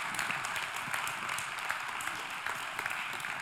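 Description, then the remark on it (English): A crowd applauds steadily throughout at a speaker's call, a dense wash of many hands clapping at once with no pauses, fairly loud, with no voices standing out above it. “Come on, help me clap that in.”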